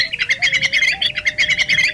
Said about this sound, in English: The cave swallow, Petrochelodon fulva. Today's Talkin' Birds featured feathered friend.